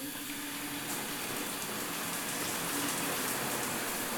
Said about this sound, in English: But what I'm really excited to see is my hotel bathroom. I'm about to turn on the faucet. Here's the shower.